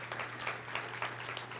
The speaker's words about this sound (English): Church, can we clap for them?